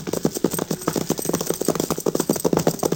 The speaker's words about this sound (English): Is that Jack's horse running loose?